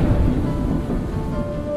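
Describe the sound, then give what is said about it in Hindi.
A thunderstorm with heavy rain: a dense, steady wash of downpour with a deep low rumble beneath it, continuous and fairly loud throughout, with no voices. “वो भी एक रात थी, ये भी एक रात है, गरजती बादलों की बरसती बरसात है”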